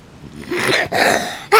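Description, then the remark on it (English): A stifled, sneeze-like burst: a breathy rush of air, a brief catch, then another hissing exhale and a sharp final puff, with no talking. “I have to sneeze. If that was a sneeze.”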